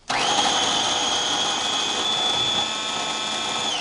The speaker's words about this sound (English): If you're using a food processor, put your regular blade in the bottom, the one that kind of smithereen stuff. Put the beans in. Close the lid. And whip them up.